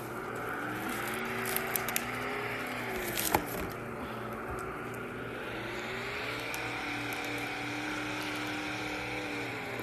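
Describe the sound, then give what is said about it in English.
A powerful engine of a number 42 race car drones loudly and steadily, its pitch dipping and climbing again as it revs, with no voices. “Listen to that powerful engine.”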